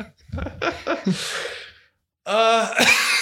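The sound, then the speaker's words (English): A father coughs: a few rough, breathy coughing bursts trail into a hoarse exhale, then after a brief silence comes a louder, strained, voiced cough with a raspy edge. “So, Dad, I think when you just coughed, it like pushed back my hair because I felt it move.”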